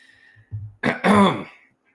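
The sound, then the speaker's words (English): A single fairly loud cough from a man behind a bar, with a throat-clearing quality: a low rumbling start followed by two quick harsh bursts, with no talking around it. “And the man behind the bar coughs, and he says, oh, yeah.”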